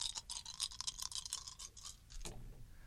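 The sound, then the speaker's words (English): A handful of dice rattling and clattering together in quick, bright clicks for a couple of seconds, ending in a final tumble and settling, with no voices. “Trust me, I've got so many dice. And trust me, I just keep getting new dice. Let me just give the people the ASMR they deserve.”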